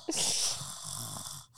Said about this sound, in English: started irritating me with her heavy breathing.